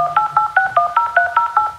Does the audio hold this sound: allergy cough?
no